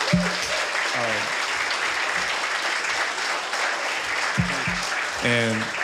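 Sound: audience applause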